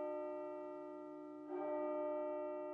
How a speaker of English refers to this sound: I woke up at about 3:30 every morning to the bell ringing at the monastery's chapel.